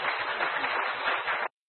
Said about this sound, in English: We give them a round of applause, please.